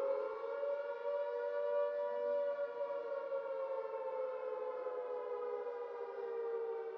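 A civil defense air-raid siren blares steadily and loudly for the whole stretch, its rich harmonic wail holding a sustained pitch that sags slightly toward the end, with no voices present.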